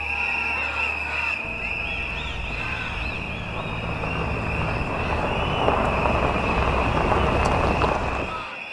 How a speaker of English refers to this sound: The rumble of trucks sound in the distance like thunder.